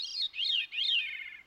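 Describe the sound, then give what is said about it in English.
A veery (Wilson's thrush) sings a short, clear song of three swirling, flute-like phrases that slur downward, alone with no other sounds. “And I see it is the veery, or Wilson's thrush.”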